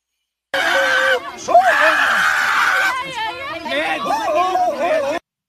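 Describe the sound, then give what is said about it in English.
A crowd of protesters' overlapping voices shouting and screaming at one another, loud, a continuous heated clamor with rising, strained cries and no quiet breaks. “And so they're basically just screaming at each other.”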